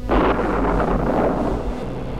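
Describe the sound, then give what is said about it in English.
A loud, deep rumble of thunder rolls steadily for a couple of seconds, dense and low with a roaring, windy texture and no voices. “His anger was the thunder”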